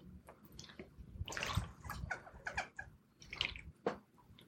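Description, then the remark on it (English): Someone drinks from a water bottle: liquid sloshes and swallows in a few irregular bursts over several seconds, moderately loud, with soft wet gulping in between and no talking. “Sorry if you heard my water bottle.”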